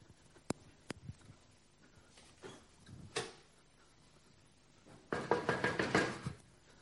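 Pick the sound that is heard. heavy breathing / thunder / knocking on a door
knocking on a door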